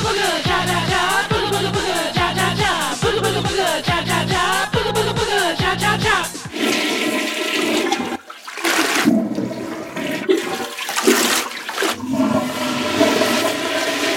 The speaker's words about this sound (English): Pancake flushed the toilet vigorously for almost an hour